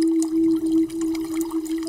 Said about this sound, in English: A lot of running water.